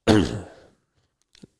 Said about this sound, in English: So, excuse me, I keep coughing.